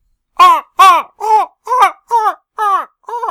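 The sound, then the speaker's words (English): A person imitates a sea lion with seven loud, hoarse, honking barks in a steady quick rhythm, the last one a little softer. No other talking. “I was actually going for sea lion.”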